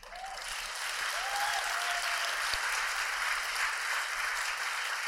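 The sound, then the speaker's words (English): A crowd applauds steadily for about five seconds, a dense, even wash of clapping with a faint whistle or two rising over it and no talking, responding to a political applause line about reforming the United States Senate. “There's nothing wrong with a well-turned political applause line”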